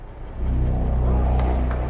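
A car engine starts up and settles into a steady, deep idling rumble with no one talking, and faint clicks or ticks sound briefly above the drone.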